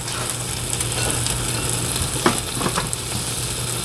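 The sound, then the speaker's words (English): Steady sizzling of ham sandwiches frying in a pan, a constant crackling hiss with a few sharper pops and spatters toward the end, no one talking. “Oh yeah, they're sizzling now.”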